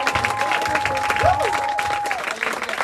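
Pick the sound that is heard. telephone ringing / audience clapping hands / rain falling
audience clapping hands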